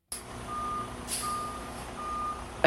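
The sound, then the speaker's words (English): Three steady electronic beeps at an even pace, the warning tone of a vehicle backing up, over a low engine rumble with a burst of noise near the end. “It's backing up down the hall.”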